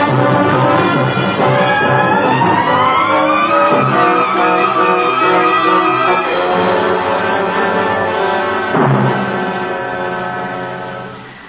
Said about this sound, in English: And I chased the car, Mr. Taylor, but they got away.